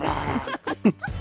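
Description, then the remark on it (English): Batman growls incoherently at Heston Blumenthal in a few short, guttural, moderately loud voiced bursts, with brief gaps between them and no clear words. “He growls incoherently.”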